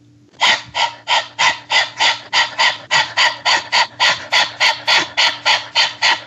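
Rapid, rhythmic dog-like panting by a person doing a breathing exercise, tongue out, breathing in and out quickly: about seventeen sharp, breathy huffs in steady succession over six seconds, each a short burst of airy noise, fairly loud with no talking.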